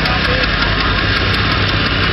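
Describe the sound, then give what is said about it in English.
A large John Deere tractor covered in holiday lights, in the first lighted farm implement parade in Centralia in 2010, runs steadily, its deep, rumbling drone and low vibration continuous and loud throughout, with a faint hint of voices mixed underneath. “It's a big John Deere, I think. I don't know my tractors that well.”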